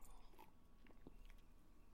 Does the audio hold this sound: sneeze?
no